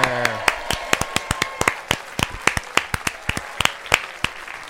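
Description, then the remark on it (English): A studio audience claps in steady, distinct beats, the sharp claps repeating for several seconds, with a brief voice at the very start. “You know, we've had a studio audience for 3 years, and we've never talked to them. They just clap and go home.”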